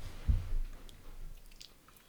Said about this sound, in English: Once you start chewing rice, you have to keep chewing.